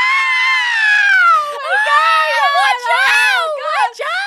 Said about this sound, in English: We have to do a trigger warning about screaming, don't we?